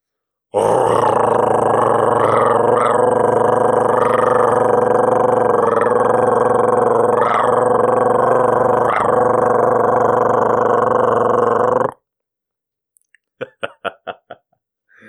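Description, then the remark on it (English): A man's voice imitates a cat's purr as a special birthday purr, trying to turn up the power: a loud, steady, low rumbling drone that holds for about eleven seconds, then breaks off into a few short, choppy grunting bursts. “Special birthday purr.”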